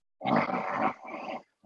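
A single loud, rough snore lasting just over a second, a raspy, throaty rumble that dips briefly midway before trailing off, with no talking around it.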